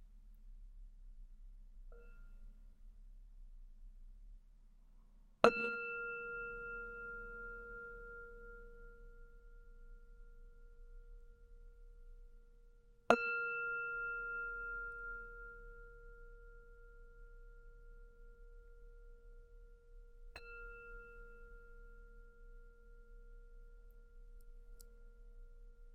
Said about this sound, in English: And we'll close with the sound of the bell, holding our bead of gratitude for the whole universe.